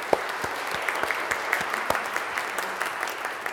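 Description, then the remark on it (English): Sustained applause from an audience for scouts and scout leaders who are standing up: a dense, steady patter of many hands clapping with scattered sharper claps standing out, moderately loud throughout, with no voices on top. “All right, first let's give them applause, but I want y'all to stay standing up.”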